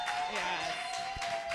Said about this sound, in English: So ghosting, cutting off communication with someone you're dating without explanation. By round of applause, who's been ghosted in this room?